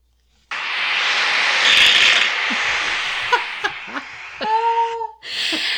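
A man's raspy snore recorded on an Apple Watch and played back through a small, tinny speaker: one long, hissing breath followed by a few rough catches and a brief whistling tone near the end.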